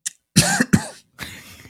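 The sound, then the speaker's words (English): A person coughs twice in quick succession, loud, followed by a softer, breathy rasp as the throat settles. No one speaks. “On that cough, everyone, thank you for listening to Hinge Points.”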